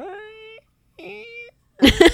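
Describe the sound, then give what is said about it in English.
A voice imitates a creaky door opening as a turn in a sound-imitation game, with two drawn-out, rising squeaky tones separated by a short pause, followed by a brief, loud, harsh vocal burst. “My turn. Creaky door opening.”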